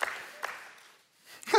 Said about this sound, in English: I like 7 claps on that one.